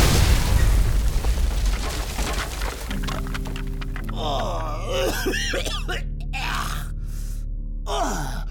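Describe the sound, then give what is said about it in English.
A loud explosion erupts at the start as a door is breached, with a deep rumbling roar that fades over a few seconds, followed by groaning, gasping vocal sounds over a low steady hum. “Good thing we were both wearing our explosion-resistant body suits, right, Dad?”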